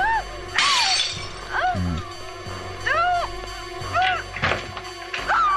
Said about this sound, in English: And Jamie Lee is about to smash the glass. Well, the patio door will have to be replaced.